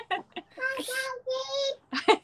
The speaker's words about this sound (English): Uh-oh, we got a toddler. It's all good. It's all good. It happens all the time.